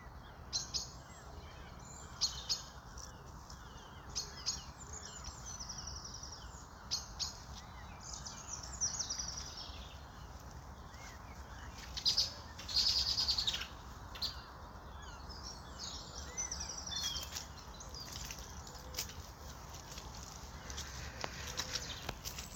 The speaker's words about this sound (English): As you can hear, I'm accompanied on my early morning dog walk by the dawn chorus, which makes such a difference to the day.